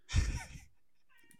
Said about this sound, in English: Stop meowing.